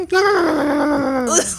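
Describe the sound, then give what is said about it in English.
A voice imitates a goblin snoring with a single drawn-out, nasal, whining groan that slowly slides down in pitch and ends with a brief upward squeak, loud. “So two distinct goblin snores.”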